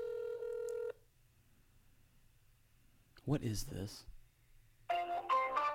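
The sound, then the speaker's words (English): An outgoing phone call rings out with a short, steady electronic ring tone, then silence while waiting for an answer; someone briefly speaks, and another bright electronic phone tone follows near the end. “If it ever goes to voicemail, is the phone just going to ring all day?”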